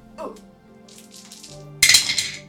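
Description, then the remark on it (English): Dice rolled on a table for a dragon riding skill check, landing on a 2: a soft, rattling clatter first, then a louder, sharp burst of clicks as they tumble and settle, with a faint low hum underneath. “Roll me a dragon riding skill.”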